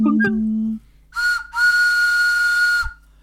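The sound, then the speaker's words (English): A short show jingle: a brief buzzy tone, then a train-style whistle with a quick blast and a long, steady, breathy blast that cuts off sharply. No talking. “I'm going to play the right jingle now and turn myself back on to what it is we're doing today.”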